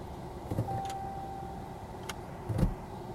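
Steady low rumble of road noise from inside a car being driven to work, broken by a few soft thumps and clicks and a brief thin whine; no one speaks.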